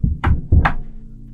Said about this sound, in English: It was around midnight. We were awakened by 3 loud knocks.